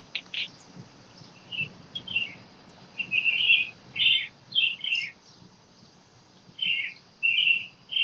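Birds chirping repeatedly in short, bright bursts, a lively run of tweets scattered across several seconds, with faint background hum and no talking.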